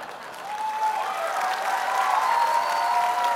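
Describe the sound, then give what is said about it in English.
An audience at a church service claps steadily throughout, a dense, even wash of applause that swells slightly and holds, with a few faint cheers or whoops rising above the clapping. “Now, you don't have to applaud this time, but I worked hard on that while we were sitting down there.”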